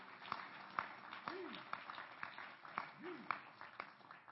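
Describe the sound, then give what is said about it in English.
A church audience claps steadily as a hand clap of praise to Jesus, a dense patter of hand claps with sharper individual smacks, while a couple of raised voices call out briefly over the applause. “Let's give a hand clap of praise unto Jesus.”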